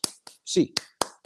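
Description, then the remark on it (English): UCLA Bruins fans' eight-count clap: five sharp, loud hand claps in a quick, uneven rhythm, with a brief voiced sound, like a short shout, between the second and third claps. “8 clap time, baby.”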